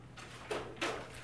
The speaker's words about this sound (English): And we'll have some people coming in and out the door, so for the next while. Just to not let it distract you.